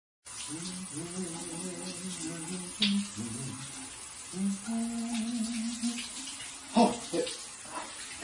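Shower water runs in a steady hiss for the whole stretch, with a low wavering hum weaving through it and a few brief splashy bumps near the end.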